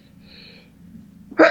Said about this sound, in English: Sorry, sneeze. My apologies. Bless you.